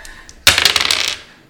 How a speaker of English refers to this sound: Yeah, it's the dice. So get him his dice again. So 1d6, roll both of those at the same time.